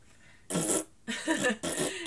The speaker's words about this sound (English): Apparently they're called the Muck Men, and they come on, and it's just like a, like, dubbed fart over top of it